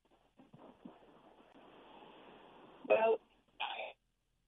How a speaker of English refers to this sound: You probably cut off because of a mobile phone or something. So give me a call back because you can't hear me now, right?